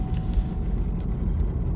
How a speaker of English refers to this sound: Did you hear that? I mean, I heard the car. Oh, you didn't hear him talking? No, I just heard the car.